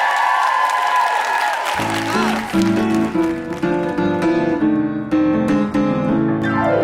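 An audience applauds and cheers loudly, and after a couple of seconds rhythmic, bright music bursts in over the continuing clapping, with a steady pulsing beat.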